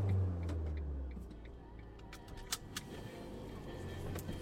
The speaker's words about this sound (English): Well, we've been on the bus for about 10 minutes and we've left the sparkly, cosmopolitan, wonderful middle of great city of Liverpool into very straightforward, domestic, residential areas.